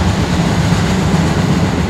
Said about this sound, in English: Oh, my gosh, another train.